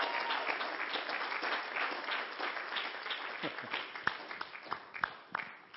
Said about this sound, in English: So we'd like to rejoice and clap and cheer them on as they go.